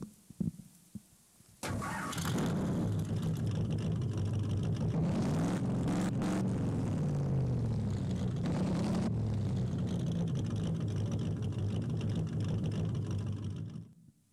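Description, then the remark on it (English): A manual car's engine roars to life after a brief quiet moment, its pitch climbing and dropping as the driver shifts gears, loud for about twelve seconds with no talking. “Isn't it fun when you're driving and shifting that gear, right?”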